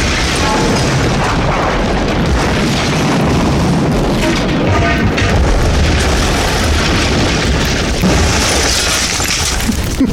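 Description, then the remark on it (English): A metal pipe smashes through a truck's engine block in a loud, continuous roar of crashing and rumbling that stays dense for about ten seconds, with no one speaking. “It went right through the engine block.”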